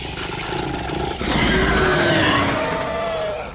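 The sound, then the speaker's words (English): A monstrous creature with a barbed tongue growls with its cavernous mouth over a man's face: a low rumbling growl swells into a loud, rasping roar with a wavering, slowly falling pitch, holding for about two seconds before tapering off. “The thing retracted its barbed tongue as it approached, moving its cavernous mouth over Wesley's face as it growled.”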